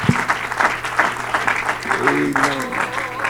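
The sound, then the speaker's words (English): An audience claps their hands together to magnify the Lord in a steady, lively burst of applause, fairly loud, with faint voices murmuring and a low hum beneath the clapping. “In Jesus' name, let's clap our hands and magnify the Lord.”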